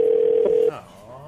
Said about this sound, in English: Who are we prank calling? Yeah, episode 50. We can't get anyone to pick up the phone.